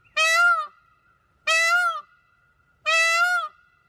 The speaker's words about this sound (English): Is it a type of bird? It is a bird, yeah. Kind of sounds like a bird saying help, but it's not that. It is a peacock call.